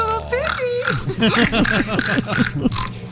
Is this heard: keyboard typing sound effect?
no